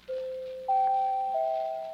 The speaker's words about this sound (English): New doorbell, too.